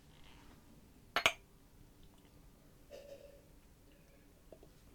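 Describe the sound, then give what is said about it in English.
A sharp glassy clink, like glasses touching, is followed by faint, soft sipping sounds in near silence, with no talking. “So let's take a sip and then leave them with a message.”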